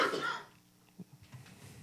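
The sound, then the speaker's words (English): A single harsh cough bursts out at the start, then fades into quiet background noise with a few soft low bumps and faint breathing. “I had to cough.”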